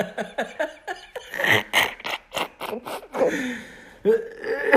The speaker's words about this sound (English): Look at him, he's dying, he's coughing.